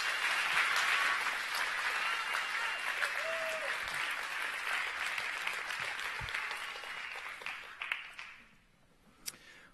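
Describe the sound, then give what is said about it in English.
A crowd applauds guests called up to share with them this morning, with steady, dense clapping for about eight seconds, then the applause thins out and fades, leaving a few scattered claps at the end. “Let's give them a big round of applause for being willing to come and share with us this morning.”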